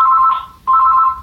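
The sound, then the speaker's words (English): An old-fashioned landline telephone in a home rings with a warbling, trilling tone, two short bursts separated by a brief pause, fairly loud and clear with no one talking over it. “Yeah, that was my mom's landline phone ringing.”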